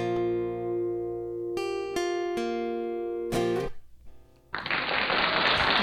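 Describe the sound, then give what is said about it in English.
A sustained electronic chord rings out with a few sharp accents, then a short burst of canned applause from a sound button, a dense wash of clapping, follows for about a second and a half. “Yeah, that's the most applause I've ever gotten. I finally found a good button for that.”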